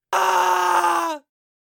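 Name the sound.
man screaming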